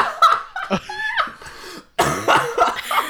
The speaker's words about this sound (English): Okay, the coughing is making this laugh even better. I'm so sorry.